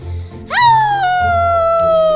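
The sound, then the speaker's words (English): A voice imitates a werewolf howl: one loud howl that swoops upward, then holds and slowly sinks in pitch for nearly two seconds over a low background rumble. “been helping me with my werewolf howl.”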